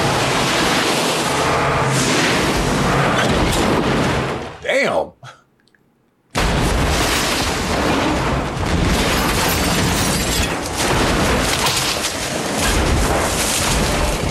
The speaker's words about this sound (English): They also run into a strange situation with this woman just in the middle of the road, causes them to have a car wreck, actually.